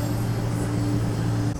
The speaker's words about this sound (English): cleaning truck, or whatever the fuck it was.